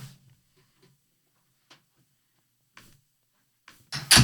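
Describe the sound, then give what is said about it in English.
A door swings shut with a loud close, bumping and latching near the end after a few faint clicks and shuffles. “Can you close that door for me?”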